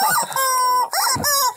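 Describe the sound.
Loud chicken clucking: three drawn-out squawking calls in quick succession, each rising then trailing off, with no talking over them.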